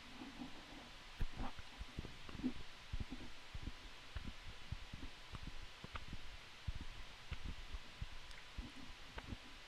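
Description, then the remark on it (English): Chewing on Canyon Live Oak acorns with the microphone held close to the mouth: a steady run of soft, irregular crunches and moist clicks, low and muffled, continuing for several seconds with no talking. “Hold that microphone close to your mouth so everybody can hear you chewing.”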